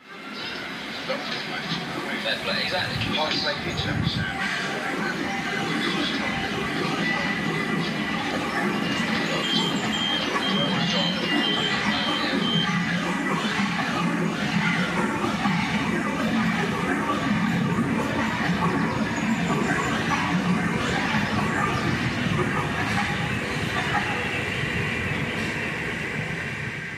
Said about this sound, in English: Like this piece called Tube, which was composed entirely from recordings on the London subway.